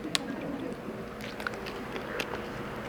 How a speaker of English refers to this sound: Excuse me, please pardon me, I crave your patience. I think this is the first time I've actually drank from water, a water bottle, during the message. Why don't I do this more often?